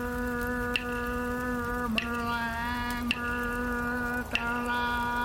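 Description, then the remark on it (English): Steady rain patters as a soft, even hiss beneath a sustained droning musical tone, with faint knocks recurring about every second or so and no voices. “Honor that rain, for it is the water of life for all living things.”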